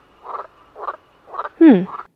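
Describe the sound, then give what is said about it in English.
Frogs croak in four quick, raspy bursts, the last one louder and more throaty, with short pauses between calls and no voices present. “Well, there are frogs coming out of the shelf everywhere I look.”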